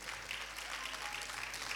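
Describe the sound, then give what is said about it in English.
A crowd applauds steadily for a woman praised as a good wife, many hands clapping in a dense, continuous patter that holds at an even level throughout, with no voices standing out. “Let's clap for her.”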